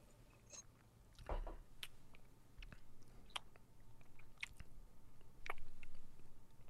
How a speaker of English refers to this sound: So let's break these whiskeys down. I've got the rye, you've got the bourbon. We're both sipping on some Michter's here.